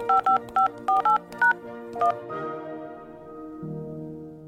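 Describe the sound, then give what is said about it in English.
A quick run of seven touch-tone dialing beeps from a push-button telephone, short paired-pitch tones in a brisk uneven rhythm, followed by a sustained musical hum that lingers to the end. “Strung together, the tones would start to sound almost musical, like a jingle you couldn't forget, even if you tried.”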